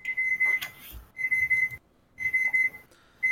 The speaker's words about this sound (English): Sorry about the beeping.